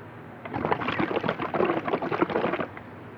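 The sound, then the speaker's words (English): Wet slurping and gurgling as water is sucked through a drinking straw, a bubbly, sputtering burst lasting about two seconds with no talking. “Hold on, let me get a drink of my goddamn water. I'm drinking from a straw.”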